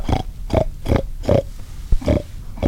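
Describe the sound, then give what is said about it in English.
A hunter imitates pig oinks to lure a group of hogs closer during a hog hunt in the woods on a rainy day: a quick, steady series of about seven fairly loud grunting snorts, evenly spaced with short gaps, and no other talking. “After zigzagging through the woods for more than an hour, they see a group of hogs, and he starts to make oinky noises to lure them closer.”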